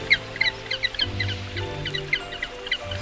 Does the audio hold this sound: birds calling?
yes